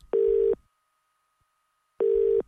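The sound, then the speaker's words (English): A telephone line tone sounds in two short, steady electronic beeps separated by a long pause, loud and clear with no voices around it, as a call is dialled to Billy Moore. “All right, let's dial up Billy Moore.”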